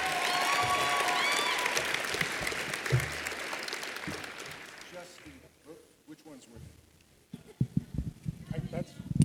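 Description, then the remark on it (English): An audience bursts into loud, dense clapping with a few whistles, sustained for several seconds before thinning out and fading, then scattered voices and room noise take over. “Round of applause, ladies and gentlemen.”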